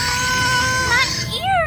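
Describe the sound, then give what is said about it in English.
A voice imitates the mighty screech of a huge flying monster chasing a speeding car: a loud, strained, high-pitched wail held steady for over a second, then wavering and sweeping upward in a final bend. “speeding away from the monster as it gave a mighty screech.”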